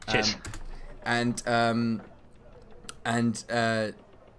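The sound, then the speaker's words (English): Quick, light clicks of a computer keyboard tap away in short scattered bursts as someone copies and pastes a dice roller into a chat, partly buried under a voice speaking in two short stretches. “I'm copying and pasting a really good dice roller into the Discord”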